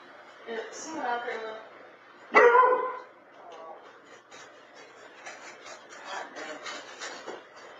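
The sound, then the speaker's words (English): Dogs bark: a few yelping barks, then one loud, sharp bark, followed by quieter scuffling and rustling noises as the dogs run around, with faint, muffled voices in the background. “The dogs are currently like just kind of running around, looking scared in a sense.”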